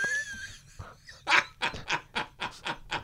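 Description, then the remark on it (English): A person imitates a sea lion, letting out a rapid series of about seven loud, harsh, honking barks in a steady rhythm after a brief, quieter vocal lead-in. “Well, and the impression was spot on. That I thought we might be at Marineland all of a sudden.”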